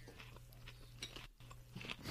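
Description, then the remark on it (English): Crisp crunching as someone chews on hard, half-popped popcorn kernels, a few irregular crackly bites over a steady low hum, with no talking. “There's like 6 or 7 non-edible kernels, but then there's like a dozen half-popped, which are like my favorite, where you could still eat them, but they're super crunchy.”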